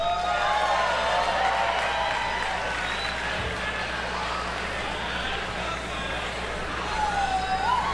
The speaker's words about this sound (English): To introduce tonight's headliner, please give a warm round of applause for Thax Douglas.